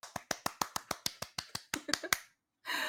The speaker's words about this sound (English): Applause.